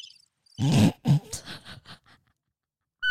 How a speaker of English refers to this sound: You were probably like driving your car. Like, is there a fucking bird in my car? Or like fucking in your house doing your dishes. Like, oh, is there a fucking bird in my house?